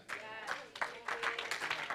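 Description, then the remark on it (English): An audience claps steadily, a dense patter of many hands with sharp bursts, joined by voices calling out over the applause. “Okay, keep clapping. Keep clapping. Keep on clapping.”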